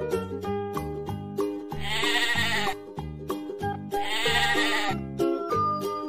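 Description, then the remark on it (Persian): Repeated sheep bleats, loud and wavering, rise over a bouncy, rhythmic musical backing, with two longer, stronger bleats standing out in the middle of the stretch. “گوسفند ما گرمشه، بابا صدا میکنه، انگار داره شکایت از این هوا میکنه، پشماشو میتراشیم تا بابایی خنک شه، پشم اونم واسه ما یه لحاف و تشک شه، یا شایدم بلوز شه برای فصل سرما.”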